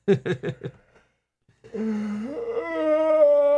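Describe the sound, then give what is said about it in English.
A few quick breathy bursts, a brief pause, then one long, loud, drawn-out yawn during a live radio broadcast, its pitch rising and holding steady until it trails off. “It's just you were loud enough yawning.”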